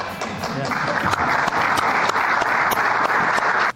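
An audience applauds Secretary Mayorkas in a dense, steady wash of clapping with scattered sharper claps, holding at an even level for several seconds before stopping abruptly.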